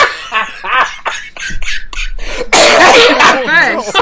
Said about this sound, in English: I'm so sorry. That hit me harder than I expected. It's hard to. When you've got a cough and you laugh.